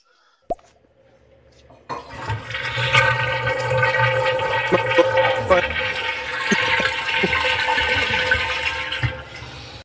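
A sharp click, then a toilet flushes with a loud, steady rush of swirling, gurgling water that carries on for several seconds without easing off.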